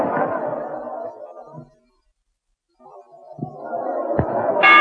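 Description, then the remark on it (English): A murmuring crowd at a boxing match fades to a brief hush, the din swells back, and a single bright, ringing boxing ring bell strikes near the end, clear above the noise. “You see him toss Morris out of his corner as the bell rang?”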